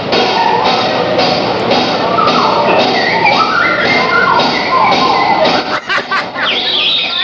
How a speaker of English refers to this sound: We're doing a slide whistle trio. Trio. We're trading fours on slide whistle.